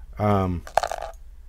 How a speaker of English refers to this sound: How much? I don't know. The dice will tell me.